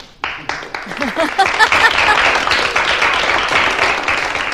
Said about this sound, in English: No applause? No applause, I guess. Applause? What happened?